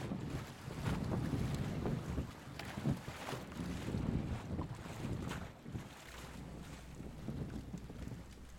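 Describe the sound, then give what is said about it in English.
A broad whoosh of sails dropping with rushing wind and creaking as a sailing ship begins to move, steady and full-bodied, easing slightly toward the end with no voices. “You hear the whoosh of the sails dropping as the ship starts to lurk and starts to move.”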